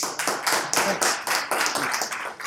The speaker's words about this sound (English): Thank you, everybody, for joining us. And a special applause for Centurion Doors.